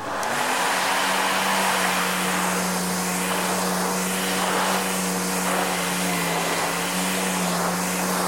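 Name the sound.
blender running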